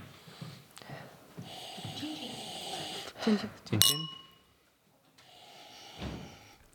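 A very light wine swishes and sloshes as it is swirled inside a glass for a few seconds, followed by a single bright, ringing glass clink, then a softer, brief rustle as things settle.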